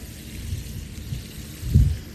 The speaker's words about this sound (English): The change of the wind getting louder and the roar that rumbles through with the thunder. Sometimes it's at the beginning of the storm.